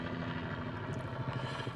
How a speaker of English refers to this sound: So I'm sitting out here around about the Norfolk Courthouse, just chilling. Got the sunroof. Oh, there's the helicopter. It's going over me head.